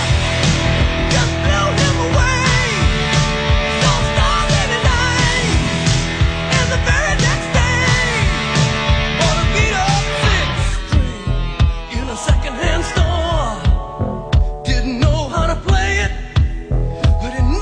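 Loud bumper music plays on its own for the full stretch between segments of a Super Talk Mississippi radio show: a dense, full-band mix driven by a steady rhythmic pulse, with a wavering melodic lead rising over it in the second half.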